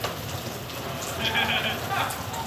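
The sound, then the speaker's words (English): Steady rain falls outdoors in the woods on a chilly day, a dense, continuous patter with brief brighter spatters of drops, moderately loud, with no voices. “It's a bit chilly out with this beautiful rain.”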